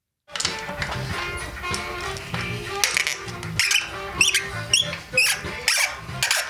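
Irregular high-pitched squeaking from the filthy, stuck rear derailleur of a blue and white street bike being removed at Halcyon Bike Shop in 12 South, mixed with metallic ticks and rattles as the parts are turned and pried, with no talking.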